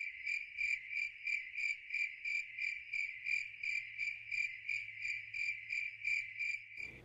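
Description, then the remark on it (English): A crickets sound effect: crickets chirp in a steady, pulsing rhythm, a bright continuous trill that repeats evenly for several seconds with nothing else around it, cutting off abruptly at the end. “Ever since they changed the mobile device to show their shitty news algorithm first, crickets.”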